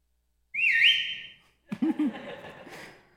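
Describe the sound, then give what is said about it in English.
A woman's loud whistle rings out for about a second, rising and dipping like a calling signal, then holding steady before cutting off. A voice follows shortly after. “All of a sudden, she'd put the whistle on.”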